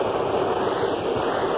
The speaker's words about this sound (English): That the airplanes today going over this park now so low that it's almost reached up in the stature.